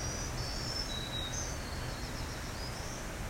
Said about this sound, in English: You can pick out voices. That really sounds like the voice of a green warbler.